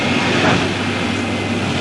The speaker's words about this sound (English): this is on the tram there